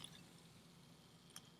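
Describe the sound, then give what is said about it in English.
A carbonated drink being poured, a soft steady liquid rush with a faint crackle of fizz above it and one brief bright tick near the end, quiet, with no talking. “Listen to that pour. Listen to the fizz.”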